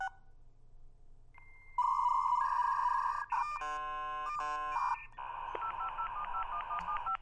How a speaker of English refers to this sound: I was going to do that horrible sound of the modem. Remember the modem? Yeah, let's do the modem. Yeah, let's get all... It's so horrible. It's such a horrible sound. But here it is.